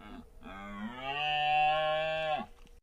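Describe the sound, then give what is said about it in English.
A single drawn-out deer doe bleat from a downloaded sound effect played through a sound mixer, low and nasal enough to sound like a cow's moo, rising slightly and holding steady for about two seconds before cutting off, loud with no talking. “This doe bleat sound that I downloaded and then added to this little podcast mixer that I thought would be fun to use in our podcast sounds nothing like a doe”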